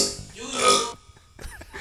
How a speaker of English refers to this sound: Seems like there's an imperfection in the hardwiring. It sounded like a burp. Oh, he's burping.